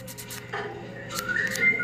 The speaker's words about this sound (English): And then you hear whistling there as well.